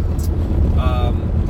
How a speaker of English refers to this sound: And I understand that the audio sucks because I'm driving a very loud car with a soft top. So, yeah, and I'm going through a very, very bumpy road.